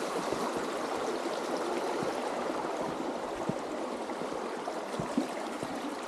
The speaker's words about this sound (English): It just rained the last couple of days. The water's flowing, but it's not too bad.